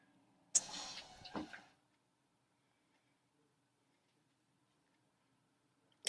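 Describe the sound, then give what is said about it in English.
A truck horn gives a single loud, short blast of about a second, followed by several seconds of silence. “Truck horn.”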